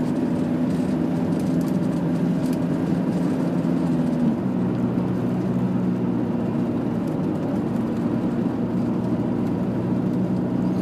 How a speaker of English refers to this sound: Annoying because I can't see what type of car it is. It's a very, now that's definitely an oldish car. Now that's, the lights are too close together to be a police car.